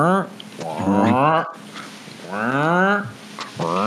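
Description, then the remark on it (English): A voice mimics a whirring camera motor with a series of rising and falling nasal, buzzy tones, like a robotic duck, in three sweeping bursts separated by brief pauses. “Sounds like a robotic duck who's just like moving around.”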